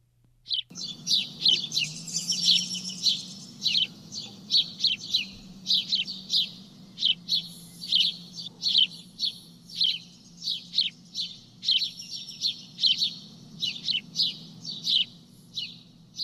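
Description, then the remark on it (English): House sparrows chirping in a steady, busy series of short, bright chips, many overlapping, over a low constant background rumble with no talking. “Although not musical at all, let's listen to their familiar chips here.”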